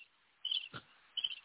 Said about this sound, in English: I'm going to let that sit for y'all. Crickets.